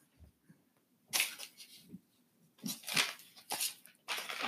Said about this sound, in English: I can still hear footsteps. I'm like, what is that? Oh my God.